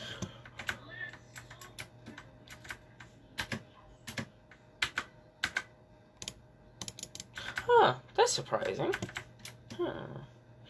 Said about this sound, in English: I was just testing out the mouse clicks to see which one's louder, my voice or the mouse clicks, and apparently it's the mouse clicks, so you know, that's good.